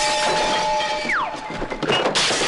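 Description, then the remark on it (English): A steady whistling tone slides downward, then a loud crash of breaking glass and clattering debris as something crashes through window blinds and out the window, with no one speaking. “crashing through the blinds and out the window.”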